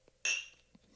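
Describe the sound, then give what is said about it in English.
Two glasses of Toki Japanese whiskey clink together once in a toast: a sharp, bright chime that rings briefly and fades within a fraction of a second, with no talking. “So, clink, clink. Cheers.”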